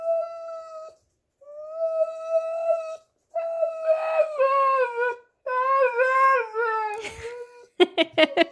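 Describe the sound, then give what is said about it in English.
A displeased husky dog that wants something whines and whimpers in a string of long, wavering, high-pitched cries with short pauses between them, ending in a few quick, sharp yelps. “That is my dear furry pandemic best friend, Dakota the husky dog.”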